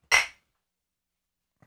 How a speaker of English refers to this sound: Salute. Clink.